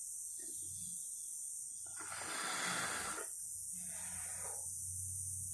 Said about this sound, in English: hang on, let me take a hit of this coyote weed.